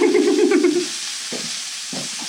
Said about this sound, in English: While your burgers are making an insanely loud frying noise, it's a good idea to have another drink.